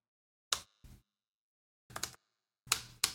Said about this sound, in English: You can talk while I'm doing this. No, I like the sound of the keyboard, actually. It's ASMR.